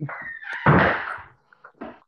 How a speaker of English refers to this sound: Who the hell is just knocking on my door?